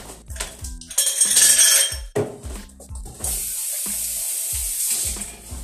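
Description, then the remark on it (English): Ice cubes clatter into a glass in a quick burst of bright clinks, then a steady fizzing hiss takes over, all over a soft, low thumping beat. “Do you care that I touched your ice? If you do, I'll just dump it into my glass.”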